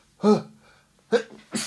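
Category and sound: human body sound, sneeze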